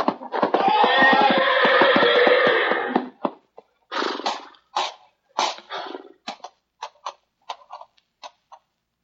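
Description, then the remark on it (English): A horse lets out a loud, shrill neigh for about three seconds as it tramples a man, followed by a run of short, sharp snorts and bursts that grow shorter and quieter, with no voices. “Watch out, Hauser. You're backing into the horse.”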